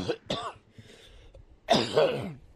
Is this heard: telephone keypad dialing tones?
no